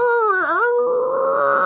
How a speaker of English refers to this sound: Now you begin to feel the tremors in the sand. You hear a screech